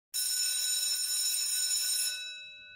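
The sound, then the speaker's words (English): A loud electric school bell at a middle school rings for the last class of the day, continuously for about two seconds with a harsh metallic clatter, then cuts off and leaves bright tones fading away. No voices. “The bell rang for the last class of the day.”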